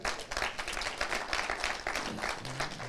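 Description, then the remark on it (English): A crowd listening to a gospel sermon claps steadily, a dense patter of many hands that stays fairly even and moderately loud for the whole stretch, with a faint murmur of voices underneath. “You clapped at that.”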